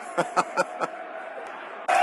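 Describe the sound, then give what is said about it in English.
A football stadium crowd murmurs steadily while a brief ripple of applause breaks out, four quick bursts of clapping, then the crowd noise surges again at the end. “2 ripples of applause.”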